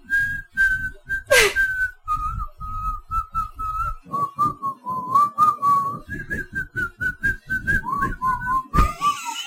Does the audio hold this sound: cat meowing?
no